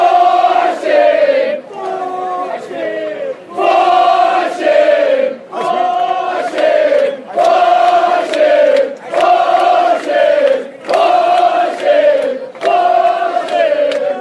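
A big crowd of cricket fans at a match chants a sung refrain in unison in support of a South African batsman, repeating the same short phrase over and over in a steady, loud rhythm with brief breaths between lines.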